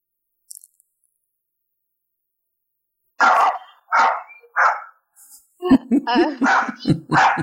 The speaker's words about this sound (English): my dog. Hey. Sorry. It happens.